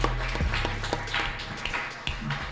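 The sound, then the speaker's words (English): Scattered applause from a small group at Mio's in Clifton: irregular sharp claps overlapping over a couple of seconds, with a steady low hum underneath and no talking. “Can we give a round of applause to Rich and Kelly?”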